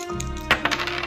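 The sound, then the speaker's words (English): Dice are rolled onto a hard surface during a board game, landing on a 6: a sharp first hit followed by a quick series of lighter tumbling clicks, over a faint steady hum. “Okay, roll the dice.”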